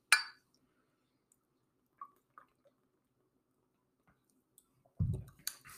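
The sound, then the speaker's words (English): Beer glasses clink together once in a toast during a beer taste test, a bright ringing chime right at the start, followed by quiet small clicks and later a dull thud with some clatter as a glass is set down. “Oh, look at that. Look at that. Cheers”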